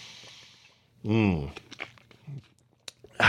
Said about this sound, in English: Man, my voice is just a little bit dry today. You don't mind if I take a sip of water on the air, do you?